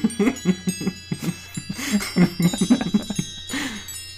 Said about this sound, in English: Right, we have lots of chimes. Like, not magical chimes, but like do shitty wind chimes.